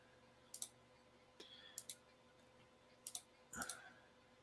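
Several crisp computer mouse clicks come in small pairs and clusters as someone clicks back into a software system, spaced irregularly over a quiet background with a faint steady hum.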